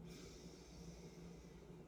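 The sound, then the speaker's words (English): A long, steady grounding breath drawn in deeply through the nose during a seated breathing exercise on a mat, a soft airy rush that lasts about two seconds, quiet with no talking. “You can go ahead and close your eyes, breathing in nice and deeply and breathing out.”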